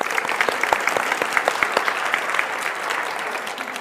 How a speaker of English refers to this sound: Now, we have many children here. Can I get applause for the children?